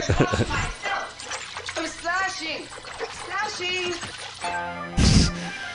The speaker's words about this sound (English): Splashing.